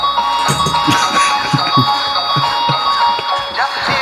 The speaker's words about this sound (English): More bells, please. Hang on, I can't squeeze the bear's hand quick enough.